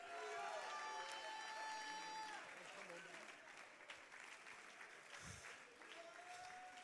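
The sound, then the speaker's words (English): A church audience claps and shouts unto God together, a dense wash of applause with loud voices calling out over it, steady and sustained from start to finish, with a sustained tone ringing through the first half. “Oh, somebody clap your hands and shout unto God with the voice of triumph.”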